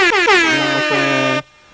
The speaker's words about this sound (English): My bad, that's air horn. That shit was mad.